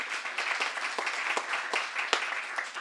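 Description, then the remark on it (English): An audience applauds the Pulitzer Prize-winning novel Beloved, many hands clapping steadily in a dense, crackling patter with a few sharper claps standing out, sustained at an even level throughout without any talking. “Yes, let's applaud Beloved.”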